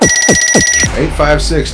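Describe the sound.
A telephone rings for an incoming call-in with a rapid, bright electronic trill and steady tones for under a second, then cuts off as a voice starts talking.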